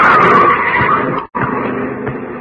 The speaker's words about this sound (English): Look out, Governor. Mind that car!